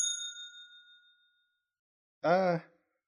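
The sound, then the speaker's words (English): A single bright bell ding, struck once and ringing out clearly before fading away over about a second, followed after a short silence by a brief vocal sound. “So I'm going to hit the bell early and we'll come back with our final thoughts.”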